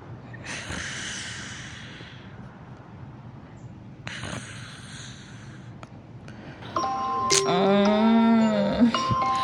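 alarm ringing

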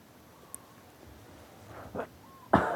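sneeze

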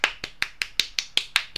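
hand clapping

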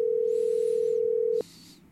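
telephone dial tone

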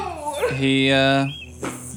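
bee buzzing

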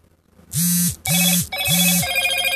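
mobile phone ringing

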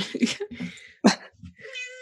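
cat meowing

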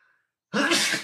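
sneeze

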